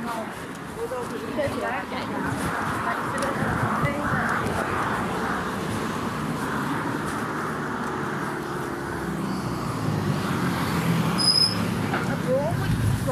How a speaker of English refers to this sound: But anyways, I'm kind of in the middle of traffic. Yeah. Walking traffic.